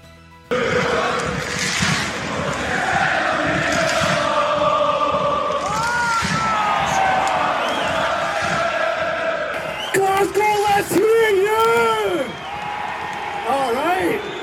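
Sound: crowd cheering and whooping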